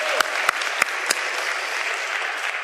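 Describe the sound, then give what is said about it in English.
A round of applause from a group for a person who guessed the right answer, a dense, steady wash of clapping with a few sharper, louder individual claps popping out at the start, holding evenly to the end without any talking. “Give him a round of applause for getting it.”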